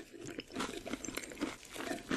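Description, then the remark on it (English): Someone crunches on Pringles chips, a steady run of crackly, brittle bites with chewing in between, moderately loud and with no talking. “Rest in peace, all of those Pringles. You said like you ate a village of Pringles.”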